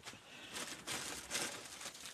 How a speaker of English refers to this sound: She flipped the script on us and showed up with a gift for us. So let's open this now while we're recording here. Here's the paper rattling.